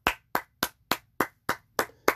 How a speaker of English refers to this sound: And I'm clapping because you know why?